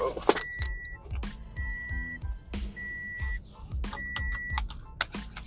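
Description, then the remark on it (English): A Toyota Corolla's warning beep sounds in short, steady tones, repeating in clusters inside the cabin over a low rumble of road and engine noise. “Some of you Bar Fitness faithfuls recognize that beep. I'm back in my Toyota Corolla.”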